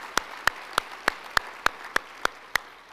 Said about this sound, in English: a great round of applause, okay? Thank you.